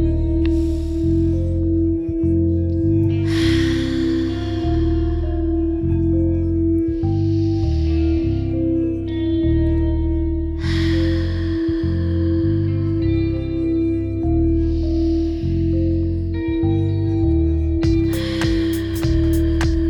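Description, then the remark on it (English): Slow, deep breaths, part of a set of five, repeat in a steady cycle, airy inhales through the nose alternating with long, full exhales through the mouth, clearly audible over a sustained, droning musical background. “I need 5 deep inhalations through the nose. Exhale fully through the mouth.”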